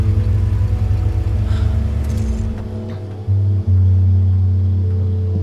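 A car engine rumbles loudly and close by, a deep steady drone that shifts pitch partway through as it revs and settles into a heavier hum. No one speaks.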